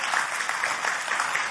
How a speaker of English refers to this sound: Come on, clap your hands.